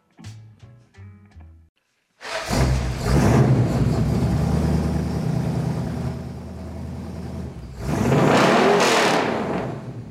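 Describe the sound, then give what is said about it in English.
A brief run of short tonal notes, then a loud engine roars to life and drones steadily before revving up sharply again near the end. No one speaks. “revving up his engines”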